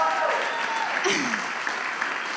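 A church audience claps in steady, dense applause that holds an even loudness throughout, with a few cheers or voices rising briefly over the clapping.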